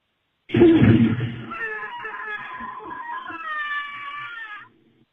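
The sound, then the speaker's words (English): A movie-style scream sound effect: a harsh, loud burst that stretches into a long, high, wavering wail lasting about four seconds before cutting off, with no talking. “That was like a movie star scream or something. It is. It's from a movie.”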